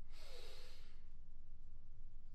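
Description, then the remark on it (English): A single sharp, airy inhale through the nose during a breathing exercise, fairly loud, lasting under a second before fading into a quiet low hum with no talking. “And last one, breathing in, into your chest, into your crown.”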